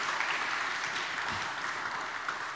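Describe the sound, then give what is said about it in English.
A church audience applauds a man who shared his story: a dense wash of many hands clapping at once, sustained and fairly loud throughout without pause, with no voices standing out. “Let's give him a round of applause for sharing.”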